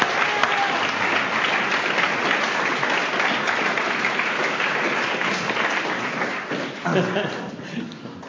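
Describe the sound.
A crowd applauds steadily for several seconds, the dense clapping fairly loud and close, then tapers off near the end as a few voices emerge.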